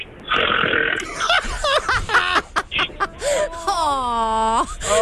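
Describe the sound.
A radio caller vocally imitates their husband's snore: a long, rough, rattling snort followed by sputtering, wheezy gurgles and a rising, whistling tail, loud throughout.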